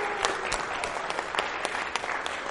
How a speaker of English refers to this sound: And you know, I know a lot of people out there help too. Can anybody who helped just stand up so we can just give you a round of applause? Yeah, stand them up.